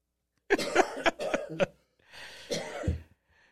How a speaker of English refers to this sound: is so excited he started coughing.